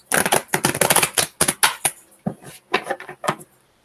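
A deck of tarot cards being shuffled for an Aries reading: a dense, crisp run of rapid flicking for about two seconds, then several shorter bursts of card slaps before it stops. No one speaks.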